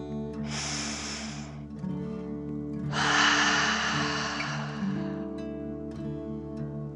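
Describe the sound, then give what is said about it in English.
A deep breath drawn in through the nose, then a longer, forceful exhale through the mouth, clear over a low steady background hum, with no talking, during a breathing exercise. “Set your listening buddy to your side and breathe in through your nose, filling up your belly, and then out through your mouth, pretending you are breathing fire. Ready? Deep breath, in and out.”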